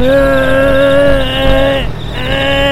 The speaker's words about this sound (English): Hit the rope retract on the truck winch.